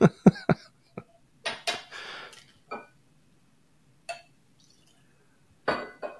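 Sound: glasses clinking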